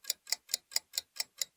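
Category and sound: household object, ticking clock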